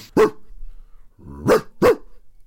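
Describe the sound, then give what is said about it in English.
A person imitates a dog barking: three loud woofs, one at the start, then a pause, then two in quick succession, the last pair preceded by a short growly lead-in. “Mate, that's me doing a woof.”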